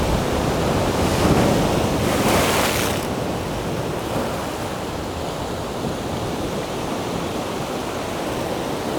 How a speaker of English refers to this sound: I'm kind of walking out to the side of the cauldron. so much water moves around. I mean, it's like 10 metres more deep and then it just fills right up to the brim.